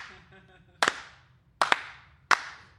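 Slow, deliberate hand claps, three or four sharp smacks spaced almost a second apart with a slight echo, and a faint voice murmuring before the first one; a team's slow clap after a pep talk.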